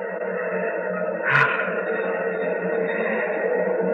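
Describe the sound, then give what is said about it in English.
The rocket engines of Pegasus 4, with nearly 1,000,000 pounds of thrust, roar in a steady, dense rumble that holds for the whole stretch, with one brief louder surge early on before settling back into the constant drone. “Hear those rocket engines?”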